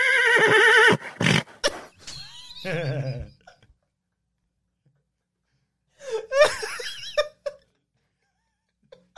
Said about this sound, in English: you're laughing at neighing sounds.